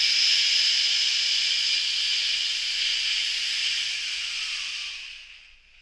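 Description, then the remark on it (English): A person exhales one long, steady "shh" lasting about five seconds as a breathing exercise to control the rate and amount of air, an even breathy hiss that holds its strength and then tapers away to silence at the end, with no talking. “So firstly, make sure there's enough air in the lungs, and then secondly, control the rate and the amount of air with this one exercise, which is just the, what I call an elongated shh.”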